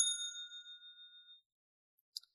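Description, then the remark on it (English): A single bright bell ding, rung as a spoiler warning, rings out clearly and decays over about a second and a half, followed by a brief faint click near the end. “So I'm going to hit the bell again because we're going to spoil Forrest Gump.”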